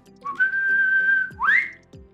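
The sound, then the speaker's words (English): A clear whistled two-note tritone motif opens a stage musical: one long sustained note, then a quick upward slide to a higher, shorter note, heard over a faint low instrumental background with no talking. “I mean, the opening whistle of the show even gives us a main motif.”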